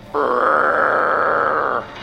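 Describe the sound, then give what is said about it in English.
A voice imitates a commander roaring into a radio: one sustained, loud, gravelly vocal blast lasting over a second and a half, steady in pitch, cutting off abruptly with no talk around it. “Commander roars into the radio.”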